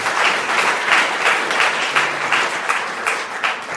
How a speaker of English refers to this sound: Amen. Amen. A round of applause.